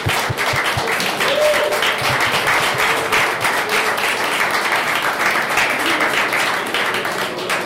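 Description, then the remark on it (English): Sustained applause from a crowd for a panel of speakers, a dense, steady wash of many hands clapping at an even loudness for several seconds, with a few sharper individual claps standing out. “Can we get a round of applause for our panelists, please?”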